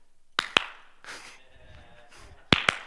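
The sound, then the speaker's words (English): Two sharp hand claps, a short pause with a soft rustle, then two more crisp claps in the same quick double rhythm, loud and percussive with no talking. “Clap on, clap off.”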